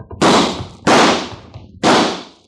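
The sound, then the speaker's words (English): Three loud gunshots, fired at a lamp, ring out at uneven intervals, each a sharp crack trailing off in a brief echoing decay, with no voices in between. “Dad, when that lamp broke, it set fire to this place.”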